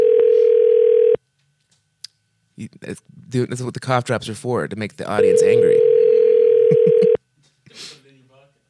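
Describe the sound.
A steady, loud telephone dial tone hums for about a second during a phone call, cuts out while people talk, then returns unbroken for two more seconds before stopping abruptly.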